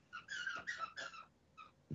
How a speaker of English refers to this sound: Her squeaky toy. Stupid dogs. My damn dog's barking. They probably. I blame Naya. She was barking before I mute my microphone.